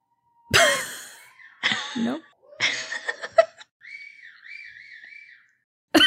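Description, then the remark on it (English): Several loud, raspy vocal bursts of shouting from people at a rally outside a window, followed by a wavering, warbling whistle that rises and falls for a couple of seconds before a final shout cuts in. “Did you hear that whistling?”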